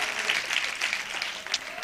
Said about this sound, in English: Amen. Hallelujah. Hallelujah. So clap your hands, all you people. Shout to God with a voice of triumph.